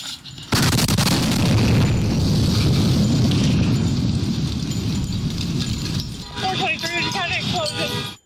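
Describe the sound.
A sudden, loud bomb blast erupts and rolls into a long, heavy rumble of debris and roaring noise, with faint voices and chirping sounds emerging as it fades.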